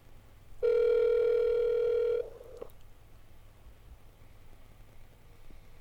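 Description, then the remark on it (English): A telephone ringback tone on an outgoing call to Cherry Hill sounds once, a loud steady electronic buzz lasting under two seconds, then the line falls quiet with only faint background hiss and no one speaking. “Still ringing.”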